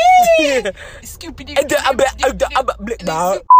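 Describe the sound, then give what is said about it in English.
A person talks steadily, then a sudden loud, flat, high-pitched censor bleep cuts in right at the end, short and abrupt. “Cut. Beep. Bloop. Blah. Bloop. Beep. Bloop. Blah.”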